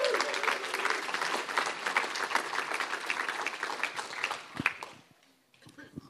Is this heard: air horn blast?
no